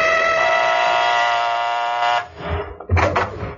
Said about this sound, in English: I got her home address out of the book and went out there. She lived in a nice enough house out on the east side of town. I rang the doorbell.